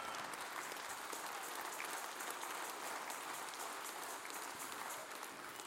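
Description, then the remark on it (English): A crowd applauds steadily throughout, dense overlapping hand claps forming a continuous wash of sound that holds at an even level from start to finish, with no voices standing out. “For some of you ain't clapped yet, you need more exposure to Jesus.”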